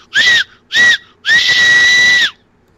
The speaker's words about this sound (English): His mum and dad were quite elderly by then, but every time he went past their home, he would pull the whistle to go...